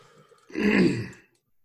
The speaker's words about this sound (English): Excuse me. I tried to mute that and then just kind of like coughed into my microphone. Sorry, guys.